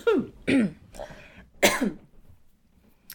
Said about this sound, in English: Sorry. I'm like so dry. I was coughing. I keep trying to make, no, I'll just power through.